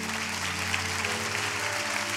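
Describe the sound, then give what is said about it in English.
An audience claps together in a dense, steady wash of applause that holds at an even loudness throughout, with a low sustained hum running underneath. “Well, I want to challenge you with those same hands that you're clapping with.”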